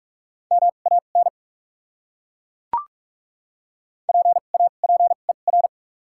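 Steady mid-pitched Morse code tones at 45 words per minute with doubled character spacing beep in short and long bursts, forming two quick groups separated by a pause with a single sharp click between them. No voices.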